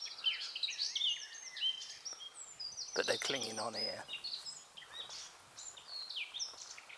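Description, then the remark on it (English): A blackcap warbler sings a busy, warbling stream of bright phrases in the UK, with other birds chirping around it outdoors; a man briefly speaks over the song midway. “What feels normal and hundreds of years of this situation being the norm, being present in the UK, is listening to sounds such as that blackcap warbler and many others besides are on the brink.”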